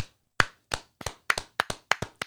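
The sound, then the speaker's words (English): A brief, sparse round of applause: about ten sharp, crisp hand claps at an uneven pace over two seconds, fairly loud, with no talking. “Start with like a round of applause? Yes.”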